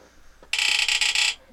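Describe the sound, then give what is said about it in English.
A prize wheel spins with a loud, rapid rattle of clicks, so fast they nearly blur together, lasting about a second before stopping abruptly. No one speaks. “we're gonna spin the Wheel of Pizza Death real quick here”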